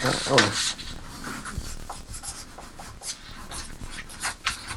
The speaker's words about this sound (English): I'm gonna like write my answer on a piece of paper and then I'll show it to you afterwards.